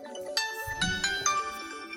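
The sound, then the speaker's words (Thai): A phone ringtone for an incoming call plays a short, bright electronic melody of several distinct chiming notes in quick succession, moderately loud and clear, with no voices over it. “เดี๋ยวแป๊บนึงนะโทรศัพท์มา”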